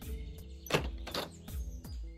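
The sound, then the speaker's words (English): Several dull knocks by a hand in a black suit jacket on a front door, on a warm, bright early afternoon, spaced unevenly over a couple of seconds, moderately loud above a low background hum, with no one speaking. “The camera cuts to the front door, where a hand in a black suit jacket knocks.”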